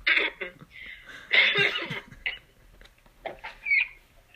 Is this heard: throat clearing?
yes